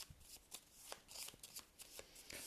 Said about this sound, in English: All right, then I need to shuffle the nine locations. Pick one at random.